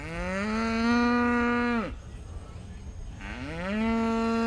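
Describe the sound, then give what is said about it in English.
Two long, loud cow moos, separated by a brief pause filled with low barn murmur and background noise, in a livestock building at the 150th California State Fair. Each call rises and holds a rich, droning tone. “Whole buildings are filled with cows, horses, sheep, goats, and pigs, all competing to be the best in the state.”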